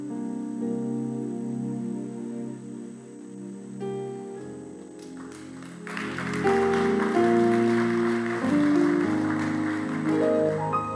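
Steady keyboard music plays throughout, and about halfway in an audience joins with light, scattered clapping that stays modest rather than building into strong applause.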